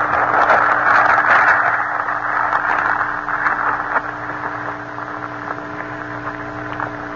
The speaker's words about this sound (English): Now listen to a chicken gizzard grinding a ration of grain with hard granite grit.